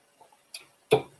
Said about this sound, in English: I want you guys to hear that sip because, y'all, this one wasn't good, y'all.